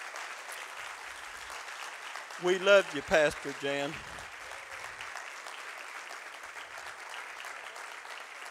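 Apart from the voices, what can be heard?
audience applause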